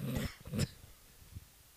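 A couple of rough, throaty coughs in quick succession, the second ending in a sharp burst, followed by a faint low grunt; fairly quiet, with no talking.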